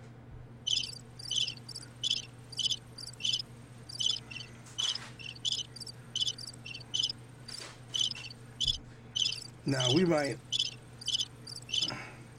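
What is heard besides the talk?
crickets chirping sound effect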